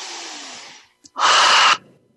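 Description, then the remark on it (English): A deep breath: a long, airy inhale that fades out, a brief pause with a small click, then a shorter, louder, forceful exhale. No talking. “Breathing into your yoni. Breathe.”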